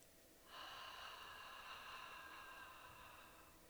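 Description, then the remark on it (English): A single long, slow breath pushed out through the mouth during a breathing exercise, counting to six, starting abruptly and trailing off steadily over about three seconds, airy and fairly quiet, with no talking. “And exhale through the mouth, counting to six.”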